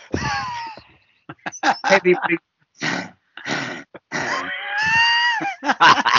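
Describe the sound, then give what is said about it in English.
A person vocally imitates the heavy straining grunts of men cycling up a climb: a string of loud, breathy groans and wheezy huffs in uneven bursts, with a couple of longer pained, tonal moans. “And then as soon as you get to the first climb, it's just 40 minutes of men grunting down the line.”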